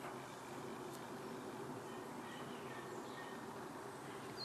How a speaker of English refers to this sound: There's a plane up in the sky. Plane flying around. Wonder where they're going.